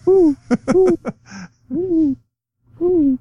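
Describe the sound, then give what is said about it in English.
A person imitates an owl for the Rice Owls team, giving a quick run of loud hooting calls, a short breathy noise, then two more drawn-out hoots separated by pauses. “Woo, woo, or something. They're the Owls, right?”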